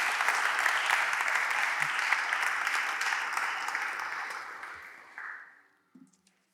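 A crowd claps steadily for about five seconds, dense and sustained, as a speaker is invited up to share, then the applause thins and fades out, with a brief faint voice near the end.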